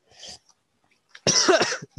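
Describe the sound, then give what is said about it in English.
A short cough, then a louder, harsher burst of coughing with a raspy tail and a final small cough, unaccompanied by speech. “Don't cough.”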